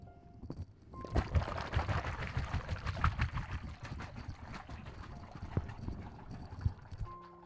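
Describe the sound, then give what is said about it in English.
Water glugs and splashes as a yellow rubber hot water bottle that has gone cold is emptied and refilled, with uneven sloshing, gurgles and handling knocks over several seconds, no voices. “She's already full, but she needs unfilling because she's become cold. So let me do that now.”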